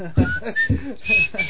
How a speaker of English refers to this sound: Can't whistle.